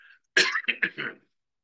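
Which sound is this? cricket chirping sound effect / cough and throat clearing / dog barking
cough and throat clearing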